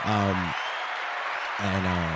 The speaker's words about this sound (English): Shout out to the boys for doing that. Clap up to the boys.